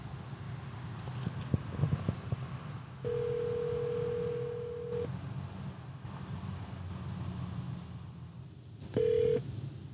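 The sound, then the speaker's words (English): A telephone call rings out on the line as a call is placed to the man selling a lot: a steady, mid-pitched ringback tone sounds for about two seconds, pauses, then begins again, over a low rumbling background with a few soft clicks. “We call the guy. Yeah, call.”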